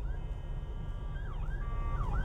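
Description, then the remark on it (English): A police car hurries through traffic, its siren wailing in sweeping, rising and falling tones over a heavy low rumble of traffic as the vehicle passes by. “Uh-oh, I got the popo coming through.”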